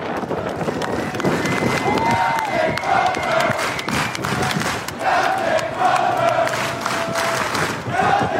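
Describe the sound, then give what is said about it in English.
A large crowd of sailors cheers and shouts loudly and continuously as Captain Crozier leaves their ship, with scattered clapping and whistles rising above the dense roar of many voices. “So, Secretary Esper, can you explain to those sailors cheering Captain Crozier, why exactly he was relieved of his command?”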